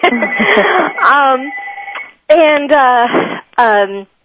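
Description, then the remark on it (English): A phone rings with a loud, melodic ringtone that plays in three bursts separated by brief pauses, the tune carrying a voice-like, sung quality. “That's not my phone.”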